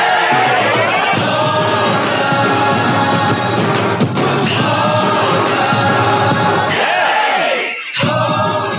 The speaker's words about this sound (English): Now, it doesn't. It does sound like kind of an arena rock kind of song, which seems appropriate for a team that plays in